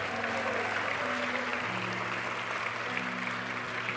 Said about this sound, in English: If y'all just give them a big round of applause real quick.